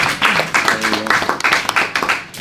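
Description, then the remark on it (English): A round of applause: many hands clapping in a dense, steady patter that holds at a fairly loud level throughout, with a voice briefly audible beneath it. “You need to give him a round of applause.”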